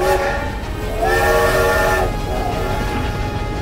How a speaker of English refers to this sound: The train's whistle blew again.